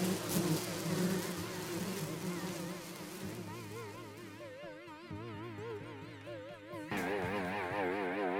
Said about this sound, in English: A swarm of bees, each the size of an emperor penguin, as over time, the station has become a gigantic beehive.